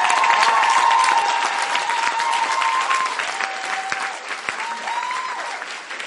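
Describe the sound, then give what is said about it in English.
An audience claps steadily for about six seconds, a dense, continuous patter of many hands that eases slightly toward the end, with faint held musical tones running underneath. “If you don't feel like clapping, you don't have to clap.”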